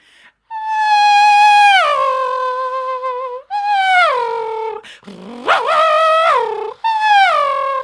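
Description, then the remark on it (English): A voice imitates a 1990s Formula One car with loud, high, whining tones in four bursts, each holding and then dropping in pitch like a gear change, one sweeping sharply upward like a rev. “And when I was a kid, I could do a perfect Formula One car noise from like the 1990s.”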